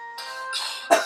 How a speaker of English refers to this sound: It's making me cough.